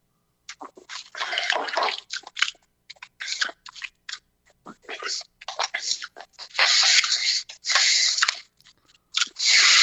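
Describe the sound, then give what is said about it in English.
Loud, messy drinking of water from a cup: irregular bursts of slurping, gulping and splashing, with short gaps between sips and a long noisy stretch near the end. “Sorry, I was taking a drink of water.”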